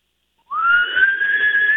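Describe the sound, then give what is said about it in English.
A single sustained whistle, made by drawing breath inward, starts abruptly after a short silence and holds a steady, slightly rising high pitch with a breathy, airy edge, loud. “I can't whistle outward, but I can whistle inward, and I can do the finger whistle.”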